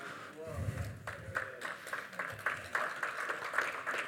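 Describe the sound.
An audience claps in scattered, uneven bursts that keep going throughout, with a low murmur of voices underneath.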